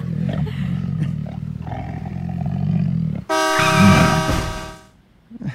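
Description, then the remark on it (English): A big cat roars: a deep, rumbling growl swells for a few seconds, then breaks into one loud, sustained, bellowing roar that trails off into silence. No one speaks. “I couldn't find a good like dog. Person eating, so I had to find, you know, like Tony the Tiger got out.”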